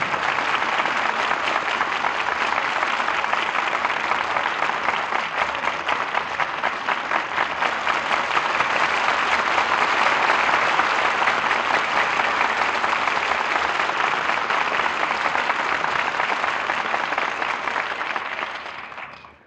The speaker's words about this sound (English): Deserved applause for our stars who have made the suspects so exciting an experience. Charles Lawton, Ella Raines, and Rosalind Even.